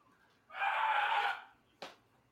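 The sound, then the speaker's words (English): A single loud, sustained high-pitched scream lasting about a second, then a brief sharp knock shortly after, with no talking. “Just screamed at the top of your lungs?”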